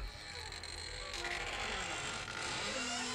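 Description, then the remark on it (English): A door creaks open in one long, drawn-out groan, fairly loud, with a grinding, mechanical texture that continues steadily for a few seconds; a sound effect at the beginning of a song. No one speaks. “He's doing the wolf. And the door.”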